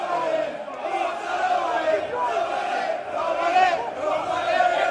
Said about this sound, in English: That's the sound of that referee, Anthony Taylor. And his wife and daughter, by the way. Yeah, his family are there too. And this is the sound of them being attacked in the airport as they made their way home from that match.